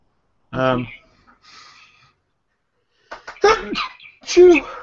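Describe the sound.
A single sharp sneeze bursts out, followed by a quiet breathy pause, then lively talking and laughter-like voices.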